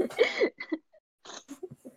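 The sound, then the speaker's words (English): Choking coughs: a strained, wheezy sputter followed by a few short, raspy bursts and gasps, separated by brief pauses, with no words spoken. “I just choked on Jesus.”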